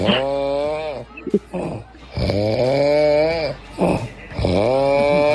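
A man on a couch snores loudly and steadily with his head tilting, three long rasping breaths with strong, tonal, buzzing harmonics, separated by short quieter inhales. Dominant, with no talking.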